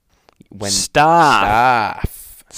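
A single yawn: a breathy intake, then a drawn-out voiced groan that rises and falls in pitch, ending with a soft exhale. No words are spoken.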